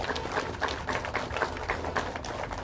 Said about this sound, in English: just to acknowledge all of the different faith leaders, all of the different community leaders that have come out today to show their support. Can we give them a quick round of applause, please? Thank you, each and every one of you.